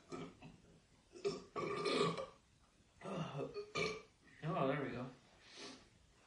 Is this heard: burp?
yes